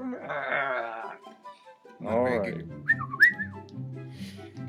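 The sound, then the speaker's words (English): Someone makes rough, growling vocal noises, then breaks into a few short, rising whistle glides, the whistling and growly voice alternating in brief bursts. “With the growly version of that whistle.”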